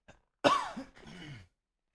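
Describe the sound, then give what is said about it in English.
A single harsh, raspy cough from a sick person, a sharp burst trailing into a rough, throaty rattle before silence. “I won't mute myself for that one so that everyone can hear it.”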